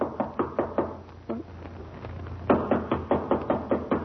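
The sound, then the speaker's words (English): Loud, insistent knocking on a door in two bursts: a series of sharp raps, a brief pause, then a harder, faster round of blows, with no voices. “Well, try knocking.”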